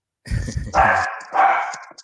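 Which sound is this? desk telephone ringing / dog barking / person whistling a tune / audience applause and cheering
dog barking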